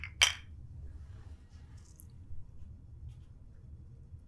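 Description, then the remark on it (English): A single bright, sharp clink of beer glasses tapped together in a toast near the start, followed by a low steady rumble with no talking. “All right, friends. All right. Cheers. Cheers.”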